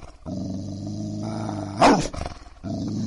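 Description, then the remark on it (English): A low, sustained animal growl from Cat, growling at the woods, rumbles steadily, swelling into a sharper, louder snarl near the middle before settling back into a continuous throaty growl, prominent with no talking. “He's still growling at the woods.”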